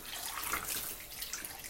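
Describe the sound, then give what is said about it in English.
A kitchen tap runs steadily into a sink as dishes are washed, a continuous bright hiss of flowing water with small splashy fluctuations and no talking. “So that's why you're hearing me wash dishes while I record this one.”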